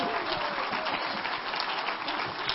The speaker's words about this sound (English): Come on, give Him a hand clap, somebody.